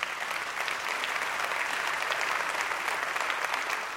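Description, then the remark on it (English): Sustained applause from a church audience, a dense steady clatter of many hands clapping at an even loudness throughout, with no voices standing out. “The applause from the body of Christ is an applause saying we love you and we care for you and we can help you and counsel you with the truth of God's word.”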